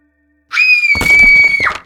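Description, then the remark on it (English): A loud, piercing scream rings out and holds for over a second, with a heavy crash and clattering noise erupting partway through beneath it, both intense. “I awoke with a start, to a scream and a crash.”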